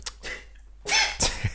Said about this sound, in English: That was a cough in a sneeze.